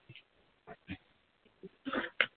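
A person blows their nose: a few soft sniffly puffs, then a louder, longer honking blow and one final sharp burst.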